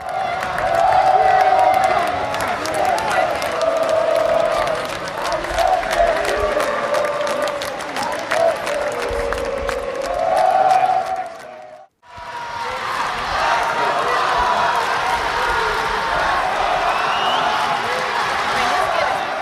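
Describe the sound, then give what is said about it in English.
A dense crowd at the jiu-jitsu Mundials roars continuously as big jiu-jitsu teams such as Alliance, Atos and Gracie Baja shout and chant support for their favorites, with scattered claps and shouted cheers rising and falling in waves; the din cuts out abruptly for a moment midway, then resumes at full loudness. “All the while, the big jiu-jitsu teams, Alliance, Atos, Gracie Baja, are shouting and chanting support for their favorites.”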